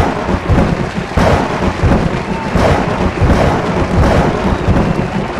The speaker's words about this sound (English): I think for this week, since we've kind of had a lot of storms and rain the last, you know, week or so, we're going to go with big claps of thunder this week to celebrate these closings.